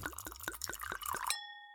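Glasses clink in a happy-hour toast, one holding a white wine spritzer: a quick run of bright, bubbling clinks ends in a single glass strike that rings on, a clear sustained chime fading slowly. It is fairly quiet, with no voices.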